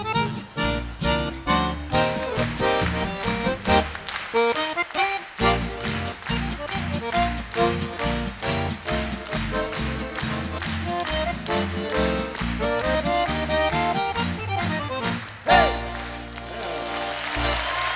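Steady, rhythmic spontaneous hand clapping keeps time alongside a lively band playing a bouncy polka tune, the sharp claps running through the whole passage with no voices.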